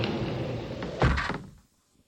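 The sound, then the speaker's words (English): A heavy wall panel in a large candlelit gallery grinds as it slides along behind two people who have just entered, then shuts with a single deep thud that rumbles briefly before falling silent. “the wall behind them slid closed.”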